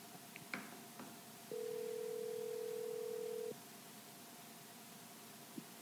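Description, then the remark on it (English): A phone call to a guest co-host of the show Bass Talk Live connecting: a couple of soft clicks, then one steady two-second ringback tone over a faint, hissy line, followed by quiet static with no voices. “We're going to see if we can get him on the phone right now.”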